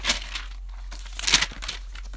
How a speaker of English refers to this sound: I got the official rustling of the paper.